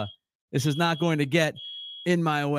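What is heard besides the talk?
alarm going off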